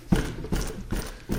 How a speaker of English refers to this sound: Stamping your foot.